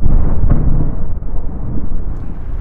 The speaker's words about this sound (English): Oh, this damn rain. The bucket begins to catch the rain.